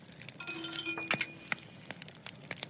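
dice rolling

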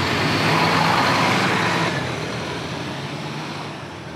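busy road traffic

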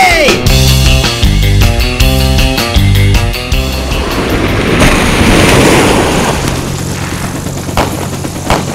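ocean waves crashing

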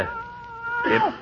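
cat meowing

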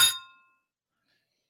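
cups clinking together

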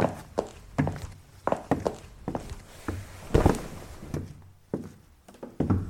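door banging

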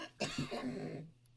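coughing

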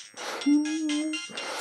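phone ringing

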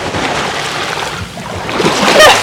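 ocean waves splashing

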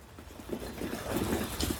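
water dripping

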